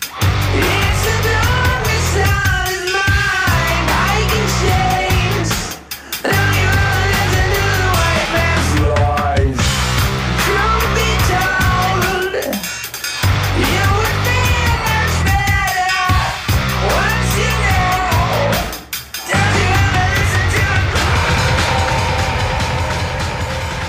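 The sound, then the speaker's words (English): Loud, dense psychedelic heavy metal rock mixed with surf rock, boogie and punk rock, with a thick distorted band sound, double bass and strained, screaming vocals, broken by a few abrupt stops before crashing back in. “a psychedelic mixture of surf rock, boogie, punk rock, and heavy metal, complete with double bass and screaming.”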